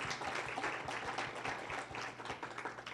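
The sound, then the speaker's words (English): An audience applauds steadily for the whole stretch to welcome a panel, many hands clapping in a dense, crackling wash with no voices over it and a faint low hum underneath. “Let's have a round of applause to welcome our panel tonight.”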